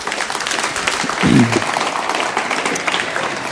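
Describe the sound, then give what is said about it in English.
An audience gives a man who shared his story one more round of applause at a morning gathering, a steady, dense wash of many hands clapping at once, with a brief voiced murmur rising out of the crowd partway through before the clapping continues. “Why don't we give him one more round of applause?”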